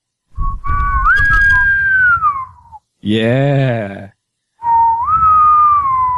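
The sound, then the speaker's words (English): A person whistles a sailing whistle, a tune that rises and then falls, in two loud phrases, with a brief spoken word between them. “Okay, I need a sailing whistle. Who knows how to do a good sailing whistle?”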